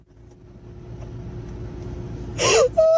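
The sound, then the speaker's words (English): Low engine rumble fills a car interior, then a woman crying in her car over a bad haircut breaks into a sharp gasping sob followed by a high, strained wail near the end. “So she's crying in her car right now.”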